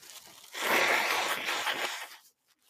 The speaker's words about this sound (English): But okay, hold on. I need to blow my nose.